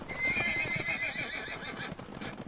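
Stagecoach horses' hooves clip-clop in a steady, busy rhythm while a high, wavering whinny rises over them for about a second, then the hoofbeats carry on alone. No one speaks.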